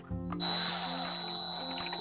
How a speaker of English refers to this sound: Turn off the drill. Turn off the drone, dog. Hold on. The drill. Hold on. No, you can just... No. So, for some reason, whenever we record, he likes to build skateboard decks.